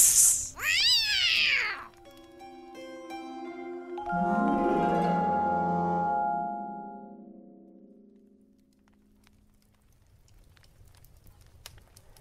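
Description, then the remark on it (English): A cat lets out a loud meow with rising and falling pitch, then a longer, drawn-out mewling wail that fades into quiet. No one speaks. “I'm a cat and I'm not participating.”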